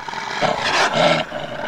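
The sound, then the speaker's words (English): Wolves snarl and roar in a single rough, throaty burst lasting under a second. It is loud, with a low rumble before and after, and nobody speaks. “How those wolves slobber!”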